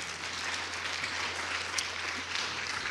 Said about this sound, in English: Oh, so you do clap here in Kloof. Okay.